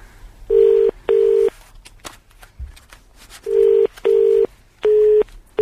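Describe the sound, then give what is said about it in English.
A telephone keypad beeps out a number with DTMF tones, redialing a caller who got cut off: six loud, steady touch-tone beeps, mostly in quick pairs with short gaps, over faint background noise and no talking. “Let's just try one more time, because it seems a shame she got cut off.”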